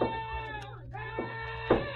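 A horse that has gone crazy whinnies in its stall in an animal tent, a long, shrill, wavering cry that dips and rises in pitch, with a few sharper bursts near the end, against a low steady hum.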